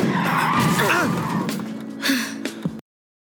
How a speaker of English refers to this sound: Car sliding. Whoa. Look out! We're skidding. Hang on.